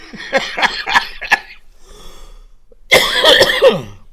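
A quick burst of four or five harsh coughs from a person with a throat problem, then a short pause and a longer, rougher fit of coughing with some throat rasp, with no talking.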